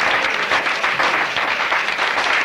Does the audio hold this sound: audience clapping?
yes